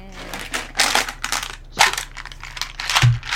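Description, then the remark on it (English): Two six-sided dice clatter and rattle in a series of sharp, bright clicks as they are rolled across a hard surface, with a few separate bursts and a low thump near the end. “Oh, my dice are so loud.”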